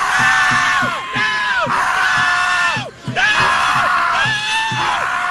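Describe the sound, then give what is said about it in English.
A dense concert crowd in New York shrieks continuously at high pitch, many voices overlapping in rising and falling wails, with a thumping beat underneath and only a brief dip in the din midway. “This is what they sounded like in New York, the screaming.”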